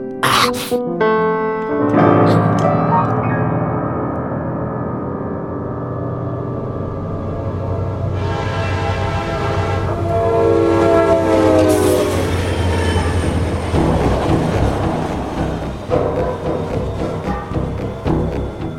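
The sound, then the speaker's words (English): A train runs along the tracks with a steady rumbling roar, its horn sounding in long tonal blasts over the rolling noise of the wheels. No one speaks. “We burn fires to lay our tracks, and on with speed, clickety-clack, we go.”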